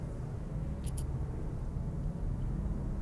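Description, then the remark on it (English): A Ferrari sports car zooms past, its deep engine roar filling the whole stretch, a steady, loud low rumble, with a couple of faint high squeaks near the start and no voices. “Watching a guy driving a Ferrari as he zooms past.”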